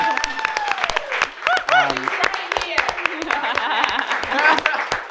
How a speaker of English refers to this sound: Guys, you can clap. Woo!